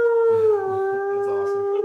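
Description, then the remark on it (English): A person imitates the wolves' howl heard in a film's aerial helicopter shot over snow-covered mountains: one long, steady, mid-pitched cry that dips slightly partway through and holds for about two seconds, with low murmuring beneath it. “You're gonna feel those wolves howling”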